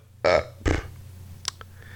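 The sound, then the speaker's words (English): Two throaty burps with a clipped, hiccup-like catch, followed by a couple of quick sharp clicks, over a low steady hum. No one speaks. “It was like a burp and a hiccup all at once?”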